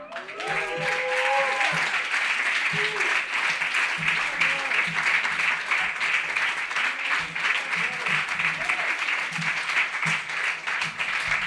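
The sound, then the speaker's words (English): A crowd applauds steadily and loudly for several seconds after a poem reading, a dense wash of clapping with a few voices cheering and calling out underneath. “Give it up.”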